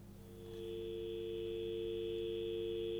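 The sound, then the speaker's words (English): A landline telephone dial tone hums steadily and continuously, a low, even electronic drone with no speech, rising in slightly at the start and then holding unchanged. “And let me just check the phone. Let's have a look, see if anything's happening there.”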